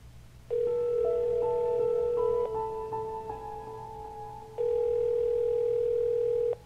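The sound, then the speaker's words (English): Two long ringback tones on an outgoing phone call, each steady buzzing ring lasting about two seconds with a quieter pause between them. The sound is clear, and no one speaks. “My heart skipped a beat when her phone rang 5 times.”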